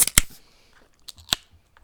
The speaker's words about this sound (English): But without any further ado, as we always do on the podcast, let's get right to the niceties and crack a couple of brews. Let's do it. In 3, 2, 1, beep.